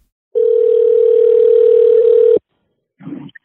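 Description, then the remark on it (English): A single steady telephone ringback tone of an outgoing call to a cell phone hums for about two seconds, loud as if through the handset, then cuts off; after a short pause a voice briefly starts speaking. “We called him up on his cell phone.”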